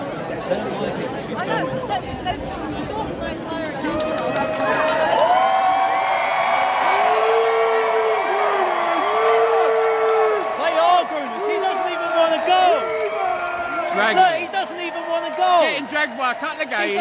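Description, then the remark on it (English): A large pro-LGBT crowd outside a library shouts and cheers continuously as parents walk into the library with their children, many overlapping voices with sustained yells rising in the middle and staying loud throughout. “it wasn't hard to find evidence of them being derogatory and shouting homophobic slurs at the parents as they walked into the library with their children, cheered on by the pro-LGBT crowd.”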